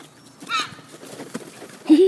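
Seagulls cry out in two brief, shrill bursts, one early and a louder, rising squawk at the end, with a murmur of background noise in between.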